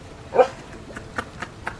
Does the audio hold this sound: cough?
no